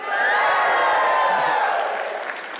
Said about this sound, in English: All right, you got to give me, we're moving back to Georgia. You got to give me a rebel yell.